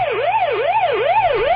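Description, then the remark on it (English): The Pac-Man arcade siren: a steady electronic wail that sweeps up and down in smooth, even cycles, about four rises and falls, buzzy and loud, with no talking. “was none other than Pac-Man.”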